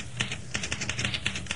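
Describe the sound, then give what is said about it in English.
Quick, uneven keystrokes on a recently repaired manual typewriter, about ten sharp clacks in a row, moderately loud with no voices. “Oh, by the way, that typewriter guy fixed my machine?”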